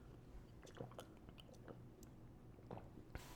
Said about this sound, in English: But what I was saying was, hold on, let me sip some water. I'm thirsty.